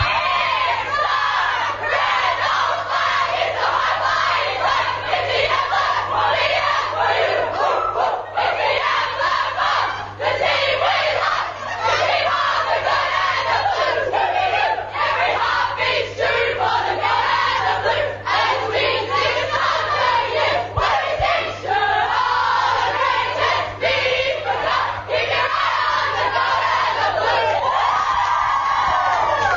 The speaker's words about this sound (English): There you are, the Cranbourne Eagles singing the song in the rooms afterwards. They were winners today, 5-6-36 over the Box Hill Hawks, 3-5-23 in front of a crowd.